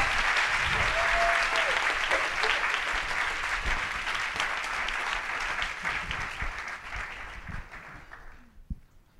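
A crowd claps steadily in a dense, sustained round of applause for three people before audience questions, gradually thinning and fading out toward the end, with a few faint voices mixed in.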